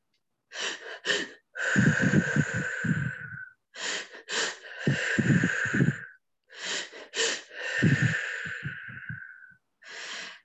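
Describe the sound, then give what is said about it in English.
A loud breathing pattern repeats three times as a deep breathing exercise: two quick, sharp inhales followed by a long, forceful exhale with a rough, rushing sound, separated by brief pauses. “First, we will start from the breathing to knock down our logic, our resistance, our noise. And the breathing would be like this.”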